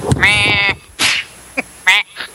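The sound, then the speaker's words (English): A loud nasal squawk like a duck's quack, followed by a breathy rasp, a short click, and then a second shorter quack, with no talking. “Who brought the duck in?”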